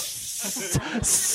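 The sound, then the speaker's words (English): A person mimics a snake with a sharp, airy hiss, broken by a couple of brief voiced sounds, then a final bright hiss; fairly loud, about a second long. “Yeah, you have like a stuffed snake with you.”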